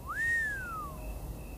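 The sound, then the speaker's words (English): A single soft human whistle that slides upward, holds briefly, then glides slowly down and fades, an impressed reaction to hearing that about $100 was made selling washed golf balls, heard alone against quiet background. “whistled softly, impressed.”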